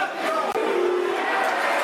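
A big football stadium crowd at a Stoke versus Millwall match roars and claps for Shane Ferguson in a dense, steady wash of cheering and applause. It holds loud and unbroken for about two seconds, with a brief dip midway and no clear speech.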